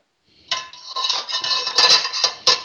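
Drained pasta from a locking-lid pasta pot being served into a bowl: a steady, bright clatter of a utensil scraping and clinking against the dish, with a few sharper knocks toward the end. No one speaks.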